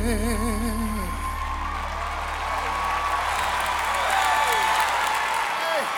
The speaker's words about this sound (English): Come on now. Everybody, please give a round of applause to Arturo Tappan.